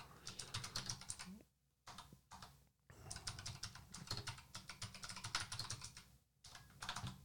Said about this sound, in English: You think I can type? Can't see shit because I have my keyboard way too low and it's not doing what it's supposed to do.